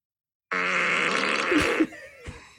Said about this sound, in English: What about a wet and nasty fart?